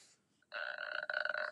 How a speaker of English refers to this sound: What was that? That sounded like a burp. Honestly.